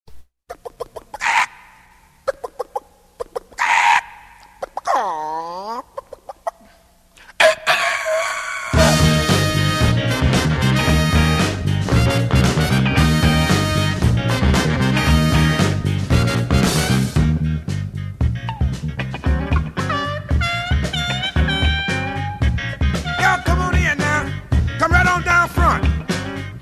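Squawking, chicken-like clucks for several seconds, then a loud funk record kicks in with a tight, driving groove that keeps pumping steadily to the end. The record is played on a radio show.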